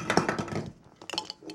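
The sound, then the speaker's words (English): A metal drink can is handled and tapped, giving a cluster of light clinks and taps followed by a few sharper, separate ticks, with no voices. “Can we get some can ASMR going right now? I said can ASMR, not banging.”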